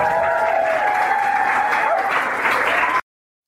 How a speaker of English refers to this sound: Shall we do some wild applause at the very idea?